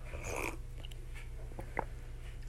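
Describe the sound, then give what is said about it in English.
Soft chewing of ice cream with a few wet mouth clicks and a brief crunchy burst early on, heard alone over a steady low background hum. “You guys probably don't want to hear someone chewing, so I apologize.”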